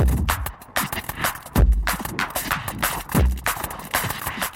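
Roland 909 drum machine hand claps snap out in a busy, syncopated drum pattern, crisp and bright over deep kick thumps and clattering percussion that was not generated by the 909, with no voices.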